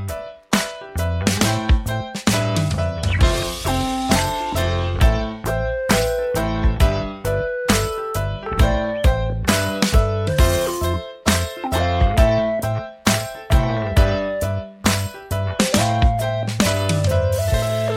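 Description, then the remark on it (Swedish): A steady, upbeat music jingle plays on its own for the whole stretch, with a regular percussive beat and bright melodic notes at moderate, even loudness, and no voices over it. “Vi får se om det kommer en jingle eller ett samtal.”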